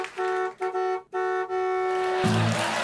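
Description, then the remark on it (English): A truck horn honks loudly several times in quick succession, then holds one long blaring blast that shifts lower in pitch near the end, with no talking. “Can you please just shut up? Truck.”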